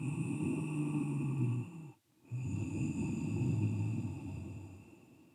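Slow, throaty breathing with a soft rushing, ocean-like hiss: one long breath, a brief pause, then another long constricted breath, steady, with no talking. The breath goes in and out through the nose with the mouth closed while the base of the throat is constricted, an oceanic or Darth Vader-like breath.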